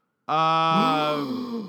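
A sudden, dramatic gasp bursts out loudly, stretching into a drawn-out voiced cry that slowly fades, with no other sounds or talking around it.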